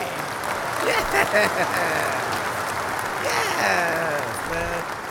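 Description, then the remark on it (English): A crowd applauds after a DJ set with steady, dense clapping throughout, while voices cheer and call out over it, rising louder toward the end. “Let me get myself some fucking applause.”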